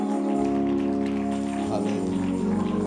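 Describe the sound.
An audience claps and applauds steadily in a dense, continuous patter, mixed with sustained tones and voices that ring out over the applause throughout.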